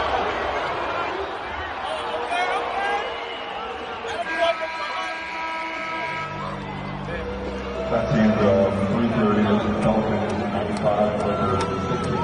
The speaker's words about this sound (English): Let's play this clip here of the Lakers getting booed by their own home crowd. That's pretty loud.